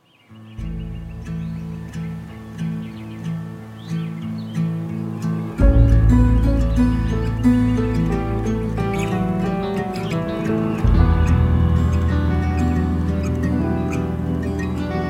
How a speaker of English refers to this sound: And I know that this one opens with like some actual sort of like some bird sounds and some sort of field recording-y sounding, sounding sounds.